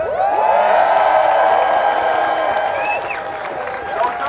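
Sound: protest crowd cheering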